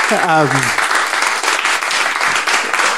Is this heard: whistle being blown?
no